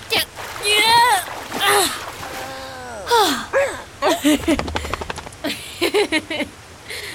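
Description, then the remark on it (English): Salt water splashes and sloshes in several short bursts as a person helps a dog climb out, mixed with strained, groaning vocal sounds from the person. “Here, let me help you out of the water.”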